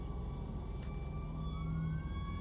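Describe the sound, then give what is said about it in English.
The siren of a hook and ladder fire truck wails steadily as it passes by, its tone sliding slightly, over a loud, continuous rumble of traffic and engine noise. “But I've been thinking, oh, here comes another fire truck. Headed by, it's a ladder truck.”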